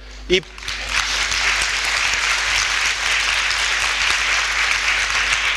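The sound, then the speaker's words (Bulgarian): Sustained audience applause, a dense steady wash of many hands clapping that starts abruptly after a brief voiced sound and continues at an even, fairly loud level throughout. “Приемам, че аплодисментите са за тях.”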